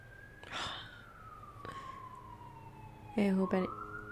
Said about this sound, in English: I hope that everyone is okay. I hear the ambulance going off.